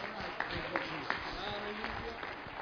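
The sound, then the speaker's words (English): A church audience claps together as praise to the Lord in a dense, steady patter of many hands, with a few sharper claps standing out, lasting a couple of seconds amid murmuring voices. “Would you give the Lord another hand clap of praise?”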